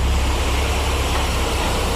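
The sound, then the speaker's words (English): A steady, dense roar of busy traffic with a heavy low rumble, cars arriving and dropping people off amid buses, continuous, with no pauses or distinct horns, and no one speaking. “You can hear cars arriving here.”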